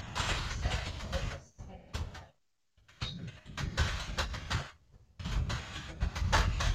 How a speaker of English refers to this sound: It sounds like you're furiously typing. I am furiously typing. That sounds like some angry keystrokes. Oh, no, those are my normal ones.